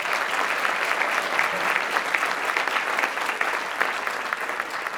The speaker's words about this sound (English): But today we have four expert pitchers, very, very brave people indeed. A round of applause before they even start.